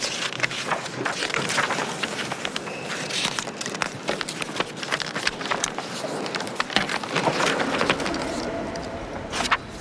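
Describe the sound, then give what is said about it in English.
Wooden chairs creak and knock together in frequent, irregular clacks and thumps, some sharper and louder than others, as people swing their chairs and knock the desks on the way through, over a steady rustling background with faint murmurs of people. “The creaking, the soft sort of knocking of the wood against wood as people swing their chairs and collect the desk on the way through.”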